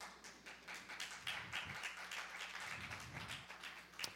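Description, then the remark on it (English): Scattered clapping from about eight people in a church, reacting to a comment: a steady patter of light, uneven hand claps lasting a few seconds with no voices over it. “When this church inevitably closes, for that comment, me and the 8 people who clapped, we can start a church.”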